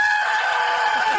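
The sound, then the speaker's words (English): A person imitates a scream with a single loud, high-pitched, sustained shriek lasting just over a second, steady and strained with no talking around it. “Do the scream for me that you did.”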